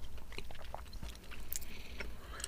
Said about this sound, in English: Don't tell me Musk Stick has raspberry in it. I think it might be raspberry flavour. It is. But once you really get to the centre and chew down on it.